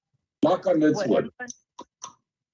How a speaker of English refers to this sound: I'm knocking on a piece of paper, which is made from a tree, so it's wood